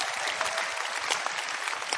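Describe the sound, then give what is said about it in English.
An audience claps steadily for about two seconds, a dense, even wash of many hands with no voices on top, moderately loud throughout. “If you believed it, you would have clapped.”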